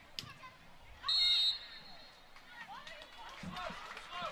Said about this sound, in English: You heard the whistle. Foul called on BYU. So a free kick for Utah State with exactly 4 minutes to go in the first 45.